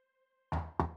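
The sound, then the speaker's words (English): Two firm knocks on a wooden door, then the start of a third, each a loud thud with a short ringing decay, following a moment of near silence with a faint hum. “It was Wednesday, and Ellie knocked at Steve's door.”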